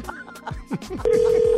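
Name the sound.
telephone dialing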